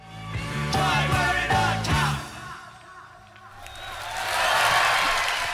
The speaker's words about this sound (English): You don't often hear the applause on the end of that song, do you?